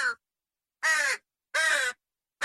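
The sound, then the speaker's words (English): A crow caws in a steady series of harsh, nasal calls, two full caws framed by clipped ones at the start and end, loud with clean silence between them. “Should we hear the crow?”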